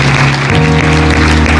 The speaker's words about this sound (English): Let's just clap our hands to him.